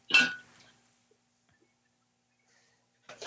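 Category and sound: household object, glass clinking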